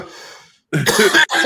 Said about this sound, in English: This nigga is coughing right into the mic.